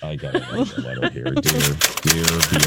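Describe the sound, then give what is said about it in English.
A voice hums along while rapid typewriter-like clacking starts partway through, a fast, steady run of sharp taps. It sounds like someone imitating a typewriter with their mouth, pretending to type a letter Jessica Fletcher style. “I got to get my typewriter out.”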